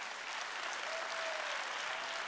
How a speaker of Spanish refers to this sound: Dale un aplauso a los que están oyendo.